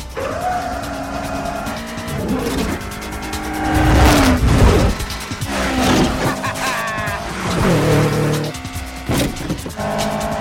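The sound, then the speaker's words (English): Loud race cars in a street race from the film Too Fast, Too Furious roar past one after another, engines whining up and down in pitch while tires squeal and skid, building to a dense burst of noise midway. “So in this minute, the befuddled man finishes his walk across the street as more racers speed by.”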